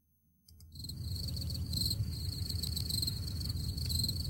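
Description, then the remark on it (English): After a brief quiet start, crickets chirp steadily in a shrill, continuous pulsing drone, with a low rumbling hum of background noise underneath. “Where's the cricket noise?”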